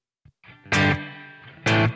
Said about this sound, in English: So let's roll those back a little. It's still a humongous reverb. Okay. So let's pull the size down.